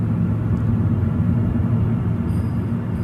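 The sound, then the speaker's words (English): Steady engine rumble and road noise from a car driving down a very dark road, a continuous low drone at even loudness with no voices. “Okay, so it's a video of like a car driving down a really dark road.”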